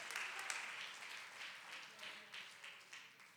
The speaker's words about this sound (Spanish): Denle un fuerte aplauso al Señor con el corazón. Bendito sea el nombre de Jesús. Aleluya.